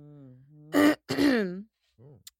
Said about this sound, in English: Mm-hmm. I was really just clearing my throat. It's nothing really that profound.